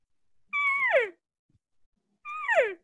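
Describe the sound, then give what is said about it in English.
Two separate cow calls blown on a small game call used in place of a regular grunt tube: high, nasal mewing tones that slide downward and fade, each lasting about half a second, with a short silence between them and no talking. “Listen to the cow call difference, right?”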